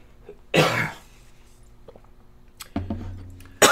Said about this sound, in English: It is just like comes and goes. And I just start like hacking all of a sudden. He woke up in the middle of the night last night, hacking and coughing.